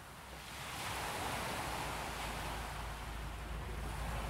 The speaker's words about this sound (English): So I'm on the ferry to Mona. David Walsh apparently wants people to approach this museum from the water, as one would have done in ancient times. Beautiful, sparkling day. There's snow on the mountains, and it's just extraordinarily beautiful.